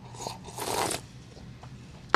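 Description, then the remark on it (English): A short slurping sip of a drink, a brief noisy burst lasting under half a second, followed by quiet and a sharp click or clink at the very end. No one speaks. “And I'm going to sip my drink on that.”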